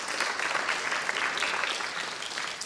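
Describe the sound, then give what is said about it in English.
A steady burst of audience applause, many hands clapping together in a dense, continuous wash of sound at an even loudness throughout, with no voices standing out. “Round of applause.”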